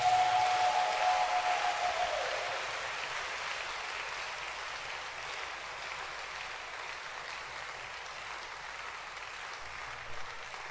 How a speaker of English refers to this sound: I want to clap for her again.